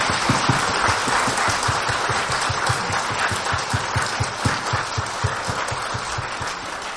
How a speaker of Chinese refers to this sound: 我们再一次热烈掌声，谢谢 Khenpo。